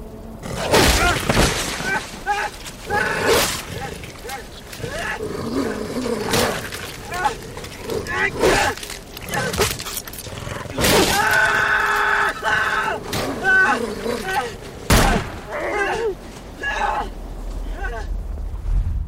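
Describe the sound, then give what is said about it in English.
A man screams and cries out in panic while a wolf attacks and mauls him, with loud, chaotic thrashing, thuds and sharp crashes, close and intense throughout. “And this episode had a very interesting use of not seeing Jeevan be absolutely mauled by a wolf, but we hear it.”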